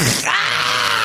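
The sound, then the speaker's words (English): A man starts to hawk a loogie, a loud harsh rasping sound in the throat, then, stabbed in the leg, slides into a strained groan, all packed into about one second with no speech. “That's a guy who starts to hawk a loogie, but then is stabbed in the leg.”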